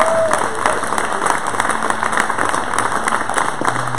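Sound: audience applause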